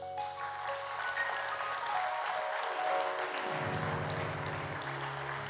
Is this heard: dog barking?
no